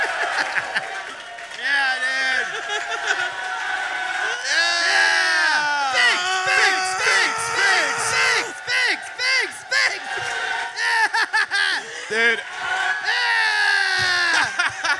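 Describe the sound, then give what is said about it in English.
A live show audience cheers and whoops continuously in an applause break, many voices shouting and hollering over one another with a steady wash of clapping underneath, loud throughout the whole stretch. “Get ready for one continuous applause break starting now.”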